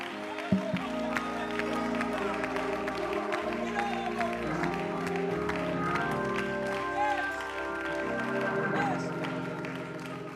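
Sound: audience clapping and shouting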